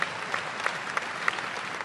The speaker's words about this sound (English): Tell the person, clap for me. Please clap.